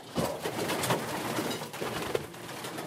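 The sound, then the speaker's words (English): Several pigeons coo softly and continuously in a pigeon loft, their low murmuring layered over a steady background of rustling and shuffling while a man checks their droppings, with no one speaking. “He's checking pigeon droppings.”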